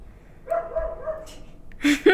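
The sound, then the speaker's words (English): A male dog lets out a drawn-out whine, then gives a couple of short, sharp barks at the end, with no one speaking. “The dog wants to hear it too”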